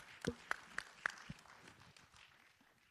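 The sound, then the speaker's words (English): A short series of about four or five sharp hand claps at a steady, quick pace, fairly soft overall, then tapering off into low background noise. “There's a hand clap.”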